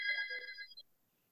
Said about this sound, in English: that was my house phone.